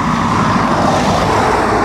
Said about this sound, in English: There's no path, we're right on road, that's why cars sound so close.